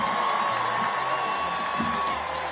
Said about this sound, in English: Did the crowd just cheer? Joe Biden wants to run again when he can barely walk. Did the crowd just cheer Joe Biden falling?